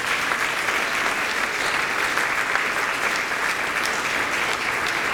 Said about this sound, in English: Let's give the kids another round of applause.